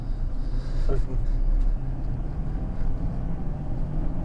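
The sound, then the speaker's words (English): A turbocharged, emissions-equipped truck engine rumbles loudly and steadily from inside the cab as it accelerates, the turbo spooling as a faint high whine above the deep drone, with a brief voice early on. “I mean, to be honest with you, I mean, you can hear that turbo too, even though all emissions equipped truck, you know, so we're not going to get tons of sound out of it.”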